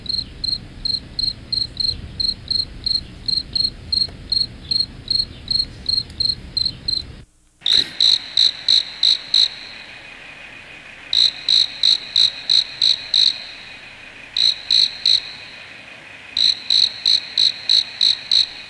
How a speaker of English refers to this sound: I want you to get a good dose of that one. Sounds similar to the cricket, doesn't it? But those are cockroaches.